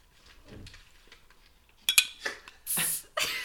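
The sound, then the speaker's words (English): A beer bottle or can being opened: after a near-silent stretch, a few sharp metallic clicks and a pop give way to a short bright burst of fizzing hiss, then more clinking. “Can you open that beer?”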